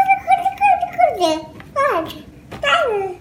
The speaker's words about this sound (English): For example, in human infant babbling, they produce a syllable type, ba, ba, ba, ba, in a rhythmic way. Then they switch to the next one, da, da, da.